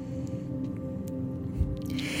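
Soft snuffling and breathy huffs from dogs during a meditation, with one brief snort and a louder hissing exhale at the end, all over a steady low electrical hum. No one speaks.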